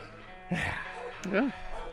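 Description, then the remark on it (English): Mahler, the dog, gives two short, throaty barks about a second apart, fairly loud over a low background hum. “And as always, living his best life, Mahler, the fake news dog.”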